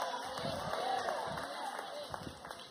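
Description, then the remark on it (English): An audience shouts and cheers during preaching in a dense, continuous roar of overlapping voices, with scattered whoops and cries rising above the crowd noise throughout. “I wish somebody shouted.”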